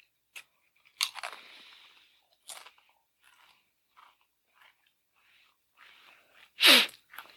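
Crunching as someone bites and chews a whole powder-coated chip, with a few sharp crackly bites and quieter chewing between, then a sudden loud sneeze near the end.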